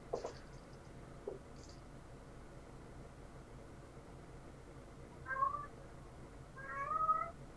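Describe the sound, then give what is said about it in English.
A male cat meows twice, with drawn-out, wavering cries about two seconds apart against a quiet, hissy background. A few faint clicks and rustles come before the first meow. “Oh, I can't see the kitty. Yeah, he's loud.”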